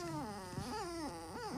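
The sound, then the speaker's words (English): A dog whimpers in a continuous, wavering whine, its pitch sliding up and down through several drawn-out cries, with no one talking over it. “Oh, the doggy want to say something?”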